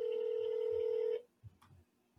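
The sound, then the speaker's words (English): A steady electronic telephone tone from an outgoing call to a private medical practice hums for about a second, then cuts off abruptly, leaving near silence with a few faint soft bumps. “Okay, we're going to call.”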